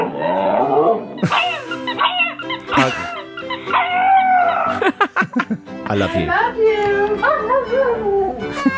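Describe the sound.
A small dog howls in long, wavering, wolf-like tones, rising and falling in several drawn-out bursts, with people talking over and between the howls.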